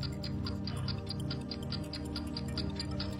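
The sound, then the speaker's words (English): A 25-second countdown timer ticks rapidly and evenly during a word-association game, over a sustained musical drone, the sharp clicks repeating about every quarter second at a constant, fairly loud level. “You still had 7 seconds left on the clock.”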